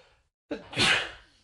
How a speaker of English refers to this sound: Excuse me. Sorry about that. Oh, I had a sneeze.